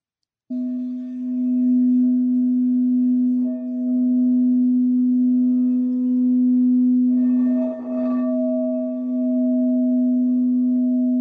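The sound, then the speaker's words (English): A gong resonates in a long, steady, humming drone with a low fundamental and a clear higher overtone, swelling briefly with a brighter shimmering burst of chimes partway through before ringing on. “I want to hear the gong came over it like a little bit”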